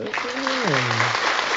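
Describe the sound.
A short burst of applause sound effect for basketball player Paul George's debut back from injury against the Pelicans, dense steady clapping for under two seconds, with a single voice letting out a long, falling whoop over the crowd noise.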